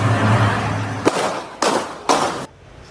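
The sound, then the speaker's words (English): Three sharp gunshots ring out about half a second apart on a street in Toronto's Greektown as a gunman opens fire in a mass shooting, each bang followed by a brief echoing tail, over a low rumble of street noise. No one speaks. “Several shots are heard before the camera pulls away.”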